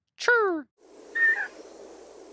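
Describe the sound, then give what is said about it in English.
A person vocally imitates the chirp of an 'akohekohe honeycreeper: one short, bright, downward-sliding call, then a fainter, thin whistled note over a soft background hiss. “And then the akohe kohe, they do this little chirp.”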